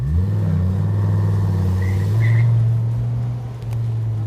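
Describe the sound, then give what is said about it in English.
A car engine hums loudly, its low droning tone rising slightly as the car pulls away to be taken out on the road, then holding steady. No one speaks. “Well, as long as we've got the engine running here, let's take this thing out on the road.”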